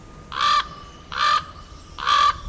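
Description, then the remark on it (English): Three loud, harsh raven croaks at the Juneau, Alaska landfill, evenly spaced about a second apart, each a rough, hoarse call over a faint background hum. “And you used to be able to find lots of ravens, too.”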